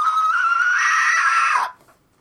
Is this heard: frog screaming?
yes